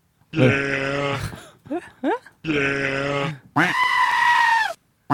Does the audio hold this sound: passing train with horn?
no